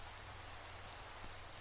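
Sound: rain falling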